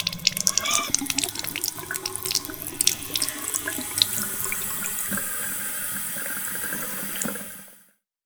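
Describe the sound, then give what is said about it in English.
A kitchen tap runs steadily into a glass, water splashing and gurgling for several seconds before cutting off abruptly. No voices are heard. “"How about I get you boys a glass of water?"”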